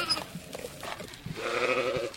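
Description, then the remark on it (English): Sheep bleat amid farmyard noise in an open meadow on an organic farm where farmers are feeding sheep, chickens and three boars; a short nasal call at the start and a longer, wavering, fairly loud bleat toward the end, with rustling and shuffling in between. “In an open meadow with soccer goals at each end, farmers are busy feeding sheep, chickens, and three boars.”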